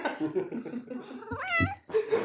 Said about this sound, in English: And why is there a cat?